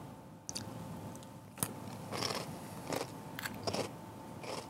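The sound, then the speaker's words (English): Crunchy chewing of Chex Mix snack, with repeated crisp bites and crackling crunches in an irregular rhythm, fairly loud, with no talking. “This is just standard Chex Mix.”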